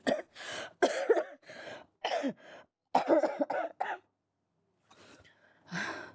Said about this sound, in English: at home I don't cough so much, excuse me. Otherwise, I wouldn't come because I don't feel like I should let you know all this sickness. But it's not contagious, okay?